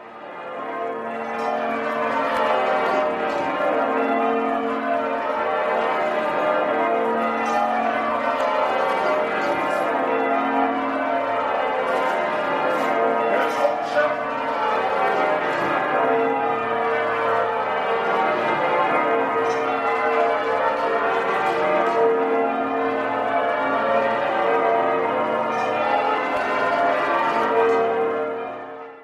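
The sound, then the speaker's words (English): The twelve bells of York Minster ring full circle in change-ringing sequences, the method being Yorkshire Maximus, with a 59-hundredweight tenor bell in B flat; a dense, steady cascade of overlapping strikes that continues without pause. No voices are heard. “Yes, York Minster has 12 bells. The heaviest bell, the tenor bell, is 59 hundredweight.”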